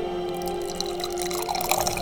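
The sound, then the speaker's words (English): Liquid pours steadily right beside the microphone for the whole stretch, a close, continuous gurgling splash with a ringing tone as the container fills, with no voices. “Pour it right next to this.”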